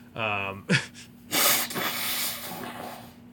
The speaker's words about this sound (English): blow that nose. Oh, wait, I thought it. I muted. It's not going to be on the record. You did not mute yourself to blow your nose. Oh, my God, that's mortifying.